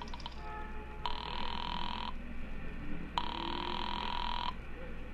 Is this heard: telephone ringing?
yes